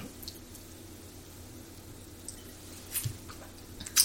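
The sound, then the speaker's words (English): Someone sips wine: a couple of soft, brief wet slurping sounds near the end, quiet, over a low steady room hum with no talking. “And then you sip.”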